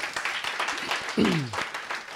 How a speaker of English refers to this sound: Oh, I think that deserves a round of applause.